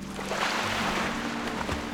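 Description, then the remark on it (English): Water sloshes and laps steadily against a small boat as two people sitting on opposite sides rock it, a continuous splashing wash with faint low creaks and no voices. “You sit over there, I'll sit over here. Let's try to rock it.”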